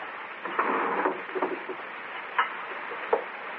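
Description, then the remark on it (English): A desk drawer slides open with a muffled wooden scrape, followed by a few sharp knocks and clicks spaced out over several seconds. Moderately loud, no one speaking. “That desk drawer seems to fascinate you.”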